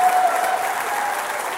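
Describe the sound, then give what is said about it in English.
A large crowd applauds steadily, a dense wash of many hands clapping at once, loud and sustained throughout with no pauses or voices standing out. “Will you guys stand up and give Corey Russell, who's part of this house, a huge round of applause?”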